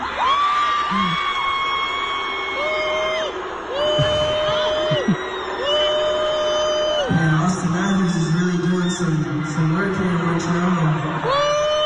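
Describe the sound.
A large crowd in Quebec lets out loud, sustained high-pitched French booing at a Leafs fan after he says "How about them Leafs, though", many voices holding long wavering tones that overlap and swell continuously for the whole stretch.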